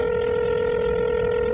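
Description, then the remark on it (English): A telephone being dialed, heard as a single steady electronic line tone that holds clear and unbroken throughout, with no voices, as reporter AJ Delario calls his editor. “AJ picks up the phone to call his editor.”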